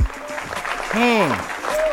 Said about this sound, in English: Can we get a hand clap for that, please?